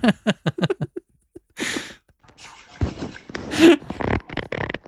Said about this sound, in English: Ooh, fart number 420. What is this Dr. Seuss ass fart?